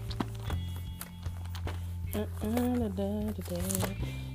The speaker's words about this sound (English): I know y'all hear me flipping this Bible. That's because I'm paper Bible saying. I could have did it the New Age way and got out my electronic Bible, but it's just not the same, y'all. You got to have the good paper word, y'all, the good paper word.